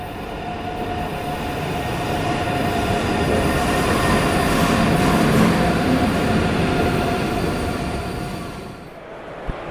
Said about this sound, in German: Und da kommt schon unser Zug nach Köln.